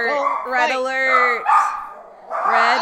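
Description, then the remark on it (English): Dogs bark loudly and excitedly at a small child riding a bike, a few drawn-out, yowling barks in quick succession with a brief pause before another burst. “Red alert. Dog fight.”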